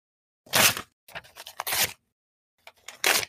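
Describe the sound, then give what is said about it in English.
Count Bloodletter, a papery monster, lets out a horrible shriek heard throughout the castle as it is attacked: three harsh, crackling rasps like tearing paper. The middle one stutters in broken fragments, and a final loud burst follows a brief pause. No one speaks. “And Count Bloodletter sets out a horrible, papery shriek that is heard throughout the castle.”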